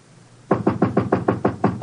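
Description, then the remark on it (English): A rapid, steady series of about nine loud knocks on an apartment door, starting after a brief quiet moment and continuing evenly to the end, with no one speaking. “We usually answer the door when someone knocks.”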